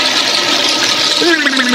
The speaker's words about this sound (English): If we think you need to waken out of your delusions, we'll stick your head in the toilet and flush it.